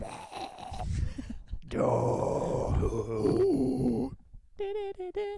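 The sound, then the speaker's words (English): A person imitates a death metal growl: a loud, raspy, guttural roar lasting a couple of seconds, followed after a brief pause by a short, wavering sung note. “He does this great thing where he just like randomly does death metal growls at random points of the song.”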